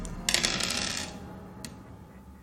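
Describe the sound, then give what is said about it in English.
Dice clatter and tumble across a hard tabletop for about a second as a player rolls against their power, then a single faint click as one settles. No voices. “So go ahead and roll against your power.”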